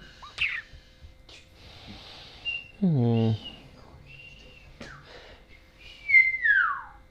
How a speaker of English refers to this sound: Well, that's kind of sick. Whistling by sucking in? Yeah.